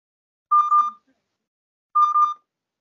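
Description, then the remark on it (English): Two short bursts of electronic smartphone beeping, set off by asking Google Assistant where the phone is, each a quick cluster of bright tonal chirps, separated by about a second of silence; clear, with no voices. “Okay, Google. Where's my phone?”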